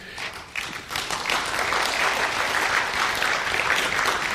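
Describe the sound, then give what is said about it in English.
An audience breaks into steady applause, a dense wash of many hands clapping that swells after the first half second and holds at a fairly loud, even level. “I've never had anybody clap at that point.”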